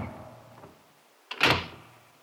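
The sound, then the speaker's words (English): A heavy oak door whips out of a hand and swings shut on its own, slamming with one loud, booming clank like the falling of an automatic bar that rumbles briefly as it fades, preceded by a soft low scraping creak. No one speaks. “But for some inextricable reason, perhaps by a spring or a weight, the ponderous mass of oak whipped itself out of my fingers and clanked to with a formidable rumble and a noise like the falling of an automatic bar.”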